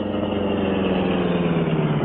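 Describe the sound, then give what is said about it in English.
The Green Hornet's car idles steadily in a dark alley, a continuous low rumble with a droning hum that holds even in pitch and loudness throughout, with no voices. “Then he put his car in a dark alley where it would be unseen for the next hour or so.”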